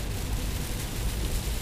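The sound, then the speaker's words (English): Steady, dense hiss of heavy rain drumming on a car while it drives on a highway and over a small bridge, layered over a deep, constant road rumble, with no voices and no break in the noise. “I did not think it was raining this hard right now.”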